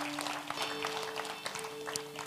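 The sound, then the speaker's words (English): A crowd claps for the Lord one morning, together in a dense, steady wash of applause, many hands overlapping, with a low sustained hum or organ tone underneath. “Can we give the Lord a big hand clap this morning?”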